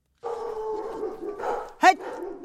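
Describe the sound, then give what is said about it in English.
Stray dogs in the Republic of Georgia whine and yelp in a continuous, tonal stretch as a woman pushes them aside walking up to her house, broken by one sharp, loud bark near the end before the whining resumes. “Pushing stray dogs out of her way,”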